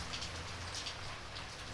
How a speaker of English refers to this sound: The rain peters away.